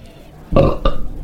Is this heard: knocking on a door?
no